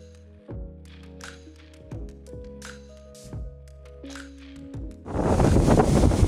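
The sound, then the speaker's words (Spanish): Soft tonal music plays for several seconds, then strong wind suddenly roars into the microphone as a loud, rough, continuous rumble that drowns out everything until the end. “bueno, hay mucho viento.”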